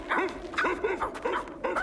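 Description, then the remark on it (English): Wolves yipping in the Yukon, Canada, in a quick, uneven series of about six short, high-pitched yelps, each with a rising-and-falling bend, loud and with no voices. “It sounds like... Wolves!”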